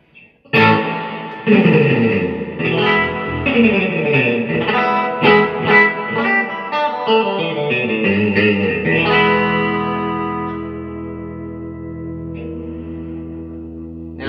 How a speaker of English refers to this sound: I'm thinking it's the springs. It has to be the springs that are rattling, because I can hear it.